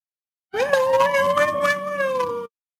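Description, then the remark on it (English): A passing siren outside wails for about two seconds, a loud, sustained tone that rises slightly at the start and then holds a steady, slowly falling pitch before cutting off. No one speaks. “Welcome to the sirens.”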